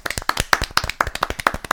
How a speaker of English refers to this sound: So a quick round of applause.